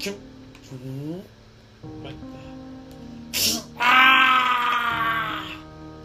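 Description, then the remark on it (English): A person cries out in pain as sharp metal pierces their arm inside a spring lock suit: short strained groans first, then a sudden loud, ragged scream that holds for over a second before trailing off into a moan. “I screamed as a sharp metal protruded through my arm, and as two wires shot through my mouth, up through my jaw, up into my mouth, and then up out my eyes.”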